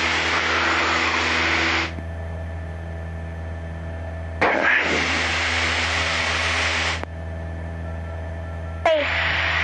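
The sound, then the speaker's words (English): A light aircraft's recently overhauled engine drones steadily in flight as the plane climbs, a constant low hum with a rushing wind-like layer that swells and drops every few seconds. No one speaks. “This one has the engine that was overhauled, probably the most recent overhaul was this engine.”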